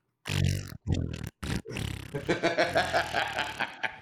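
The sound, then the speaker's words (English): Loud fart noises: three short raspy blasts, then a longer wavering, buzzy one lasting a couple of seconds, with no talking. “You're making farts out.”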